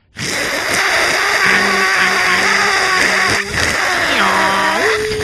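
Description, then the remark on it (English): A voice imitates a dial-up modem: loud, continuous harsh hissing and buzzing with steady whining tones, a brief break partway through, then a sliding pitch sweep near the end. “You guys, I've been working on my crowd sound effect. It sounds exactly like a modem.”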